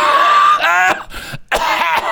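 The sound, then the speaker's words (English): A few loud, forced coughs, deliberately exaggerated and raspy, coming in two main bursts with a brief pause between them, a fake cough meant to clear a path through a one-way aisle. “Just start coughing.”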